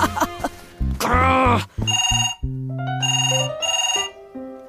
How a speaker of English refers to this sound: When I heard the phone ringing, it was my perfect excuse to escape Peter's celebration party.